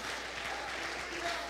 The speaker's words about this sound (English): Oh, clap your hands, everybody, and praise him, because there's power in responding to his word.